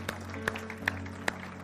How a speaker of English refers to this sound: Can you clap your hands for the victory we have in Jesus today? Can you bless him today?